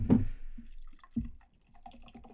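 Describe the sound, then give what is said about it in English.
Beer is poured into a glass right into the microphone, starting with a heavy glug, then a second splash, followed by softer bubbly trickling and fizz. No one speaks. “Wow, he's pouring that beer like right into the mic.”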